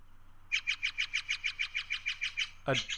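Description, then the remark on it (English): A blue jay lets out a rapid, harsh string of about fifteen scolding notes, fairly loud, ending in a sudden rasping squawk. It sounds angry. “It sounds really angry.”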